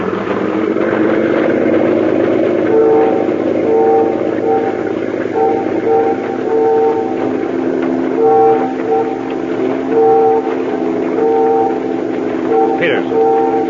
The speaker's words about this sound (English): Ferry whistles. They're signaling us. Yes. Have them cut our motor. Cut the motor, pilot. Quick.